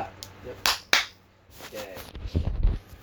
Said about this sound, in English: Clap. Yep. Okay. Are you sure you can sync these up?